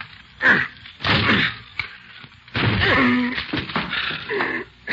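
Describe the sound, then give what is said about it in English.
A door is battered with a chair: several loud, heavy thuds and cracking crashes land in uneven succession, with wood rattling and splintering between the blows. “Okay, give me a chair. I'll break this door down for you.”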